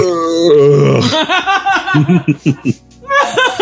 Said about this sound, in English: You really forced that one. No, I didn't force it. It just didn't happen. It was one of those ones that, like, feel like you got a burp, and then you burp, and it's just, It gets stuck into your throat? It was a fake burp. Yeah. It was a furp.